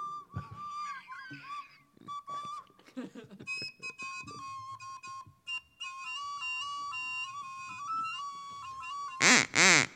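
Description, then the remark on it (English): A duck call whistle honks out squeaky, nasal quacks, mixed with a reedy, wavering melody and ending in one loud, buzzy blast. “Oh, so there's a duck whistle.”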